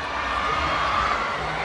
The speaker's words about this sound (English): Fans just busting out K-pop choreo, dancing together even if they're strangers. And when someone is really good, the crowd hypes them up, which is what's happening now.